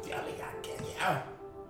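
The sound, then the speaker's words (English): Liquor glugs and trickles as it is poured into a small shot glass, the pitch rising briefly as it fills, with murmuring voices in the background. “Why are we pouring our own shots anyways?”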